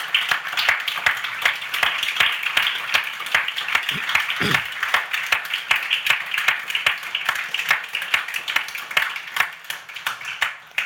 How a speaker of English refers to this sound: Can I have a round of applause, please, for the MSF team?